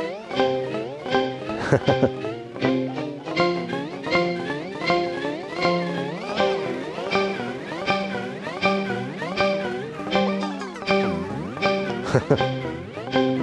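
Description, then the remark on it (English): A bright, harmonic synth tone plays a steady run of repeating notes with gliding, meow-like pitch bends, each note echoing into the next through a delay effect, with no reverb added. “Let's bring the reverb out just so we can hear.”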